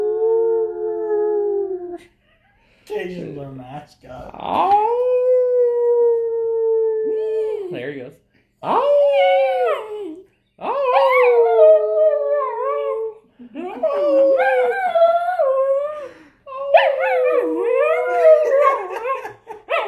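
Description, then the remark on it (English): A dog howls in a series of long, wavering, sliding notes, pausing briefly between phrases and sometimes breaking into higher yips, for about twenty seconds. “I could probably get him to howl.”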